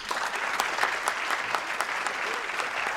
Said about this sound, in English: So by sound of applause, let me know if you know what I'm about to say and you fully agree.